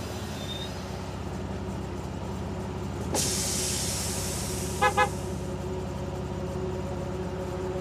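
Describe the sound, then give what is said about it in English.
A city bus taken to work idles with a low rumbling engine, then its air brakes release a loud hiss, followed moments later by two short honks of the horn. “My car got totaled last night, so I had to ride the bus to work.”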